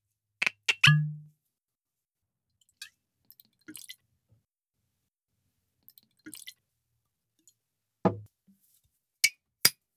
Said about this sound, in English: Why don't you pour us a couple of drams? Would you like to do the honors? Yes, please.